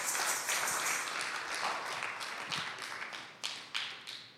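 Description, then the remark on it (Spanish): A church audience applauds for God in a dense, steady wash of clapping that gradually thins out, with a few sharper individual claps standing out near the end. No one speaks over it. “Dele un aplauso.”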